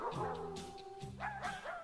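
Dog barks and drawn-out yelps rise and fall, singing a song's melody over steady musical backing, loud, with several pitched bow-wows in quick succession.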